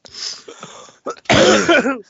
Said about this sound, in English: I had to mute because I started coughing like crazy. Yeah, I muted because I was afraid you might catch like a little wheeze in there.